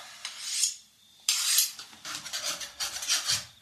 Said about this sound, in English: Carve me a slice of that cheese. A very good idea, sir.